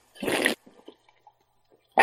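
A short, bright fizzing hiss as a cider can is opened, followed by a few faint clicks and wet sipping sounds, then another burst of fizz at the end.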